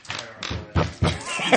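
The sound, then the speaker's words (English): A handful of dull, heavy knocks thud at an uneven pace, fairly loud, like knuckles rapping on a solid x-ray door, with faint voices murmuring underneath. “I'm going to go ahead and knock on the x-ray door.”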